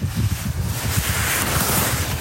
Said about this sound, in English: Good God. It's windy.